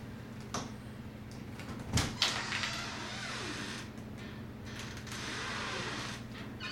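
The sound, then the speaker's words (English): A door is opened, with a sharp latch click followed by a soft creak and some rattling movement over a steady low background hum; no one speaks. “was that at your door? I don't know. Let me check. I don't think it's locked. Just open it.”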